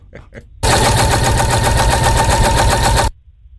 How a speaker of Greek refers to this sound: Ραπτομηχανή, πάρτο. Μπράβο.